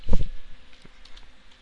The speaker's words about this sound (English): I'm trying to type a correction in my notes here, and I'm having a serious problem with this keyboard.